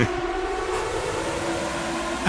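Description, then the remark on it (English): An air raid siren used as a quiz buzzer sound effect blares as a loud, steady, sustained wail, holding one droning pitch for the whole couple of seconds, with no voices over it. “I thought I couldn't find the proper quiz buzzer that was free to use online, so I found like it's like an air raid siren, I think, and it goes for about a half a minute.”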